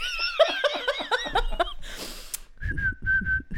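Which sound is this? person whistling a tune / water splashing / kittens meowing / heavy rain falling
person whistling a tune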